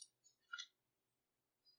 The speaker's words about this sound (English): And the other one, I'm just doing a full reroll of both dice.